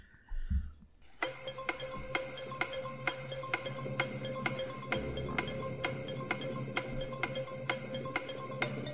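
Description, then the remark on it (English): A countdown clock timing a letter-jumble quiz round ticks steadily and evenly, about two ticks per second, clear over a sustained musical bed, with no voices. “Start the clock.”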